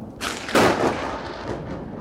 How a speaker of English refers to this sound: The sky split white outside the cabin. That crack of thunder I honestly felt as much as heard.